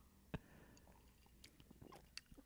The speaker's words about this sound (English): Well, here, I'm going to take a sip right now, and I'll let you know what I think. Here you go.